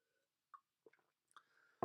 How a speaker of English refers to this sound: Sip of water here, hang on.